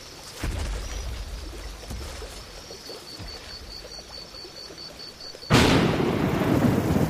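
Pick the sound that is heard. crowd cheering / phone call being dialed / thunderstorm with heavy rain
thunderstorm with heavy rain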